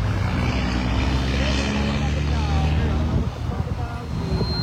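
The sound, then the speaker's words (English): A steady, dense roar of busy street traffic on Skyland Boulevard around midday, with low engine rumble and passing vehicles blending into continuous noise that stays loud throughout. “If you're hearing the sound of traffic, obviously a very busy yes.”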